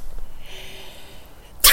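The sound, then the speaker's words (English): A voice imitates a loud, forceful sneeze: a quiet, drawn-out inhale builds up, then ends in one sudden loud, sharp, high-pitched burst. “Yeah, quite loud and a bit high-pitched, but not like... Do an impression. Okay. Yeah, go on, sneeze.”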